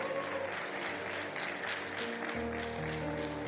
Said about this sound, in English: Give your hand. Come on, clap your hands this morning.